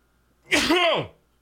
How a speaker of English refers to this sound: Hang on, I got to sneeze.